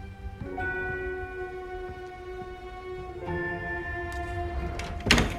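A sustained, layered tonal drone plays steadily, then near the end a door is shut with a single short, solid thud that briefly rises above the background.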